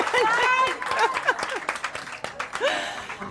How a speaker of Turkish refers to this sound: Aysar Gürel'i de buradan bir alkışlayalım ya. Bir Aysar Gürel'i alkışlamayacak mıyız? Alkışlayalım Aysar Gürel'i.